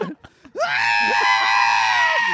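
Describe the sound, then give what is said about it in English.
A voice lets out a loud, drawn-out bleating scream in imitation of a goat, held steady for nearly two seconds after a few brief soft sounds, then cutting off abruptly. “Yeah, scream like a goat for me.”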